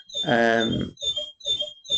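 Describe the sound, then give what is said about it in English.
A bird-call clock chimes 2 o'clock with a recorded birdsong: one long, harsh, nasal squawk, then three shorter rasping bursts with a thin high whistle running over them, fairly loud and with no talking. “I'm not actually sure that's the right bird for 2 o'clock because obviously I had to change the clocks, and that one got a bit confused with its bird sounds as I was changing it.”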